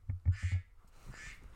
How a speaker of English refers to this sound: That is not a duck. Someone texted Kara. That's my text message.